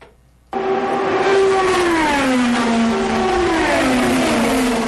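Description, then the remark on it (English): Race car engines roar in loudly after a brief silence, their high, buzzing whine rising and falling in pitch as two cars run door-to-door off turn 4, beating and banging as they race to the checkered flag, accelerating and shifting, with no voices. “Off of turn number 4, two drivers run door-to-door, beating and banging, racing to get to the checkered flag.”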